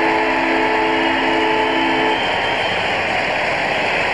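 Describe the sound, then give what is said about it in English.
The final siren at Subiaco Oval blares one long, steady, horn-like tone over a loud crowd roar at the end of a football match in which the Fremantle Dockers beat Fitzroy by 86 points. It cuts off after about two seconds while the roar carries on. “Go the Lions, and there's the siren.”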